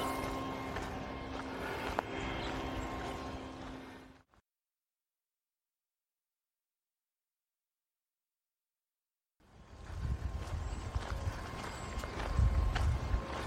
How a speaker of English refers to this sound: Hang on a bit for the sound to go away. It's that water pump that's over there with the sprinklers going in the fields.